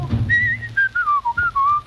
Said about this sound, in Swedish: Jag mår så himla fint idag. Ni får förlåta om jag visslar ett slag.